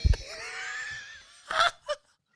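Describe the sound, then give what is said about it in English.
A stifled, muffled sneeze in a warehouse, the sneezer covering his mouth: a drawn-out, voiced intake of breath builds for about a second, then a short smothered burst and a small trailing puff, with no talking. “That one was quiet. That's what I mean. He covered his mouth.”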